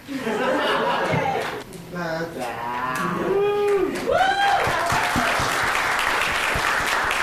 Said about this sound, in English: Big round of applause, yes. Some serious awe factor in that one as well.